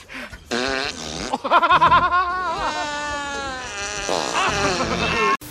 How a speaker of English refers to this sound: show the clip of … Does Bill Cosby fart into a jar? He farts into a coffee can.